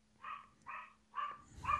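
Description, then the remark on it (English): A dog barks four times in a steady rhythm, each bark short and sharp, the last one slightly louder with some low rumble underneath. No one speaks. “Oh, as we got some dog barking there. Yeah, sorry. My dog didn't like it.”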